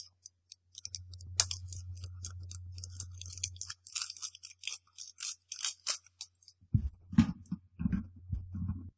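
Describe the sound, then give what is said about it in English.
Crinkling and sharp clicking of plastic candy packaging being cut and worked open with scissors, irregular snips and rustles over a low steady hum, with a few heavier thumps near the end. “Here, you want some scissors?”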